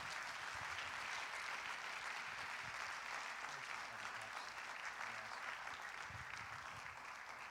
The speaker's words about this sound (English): I'm very grateful for him and very thankful that tonight he is going to be the speaker of this ordination service. Clap your hands and welcome him as he comes to this pulpit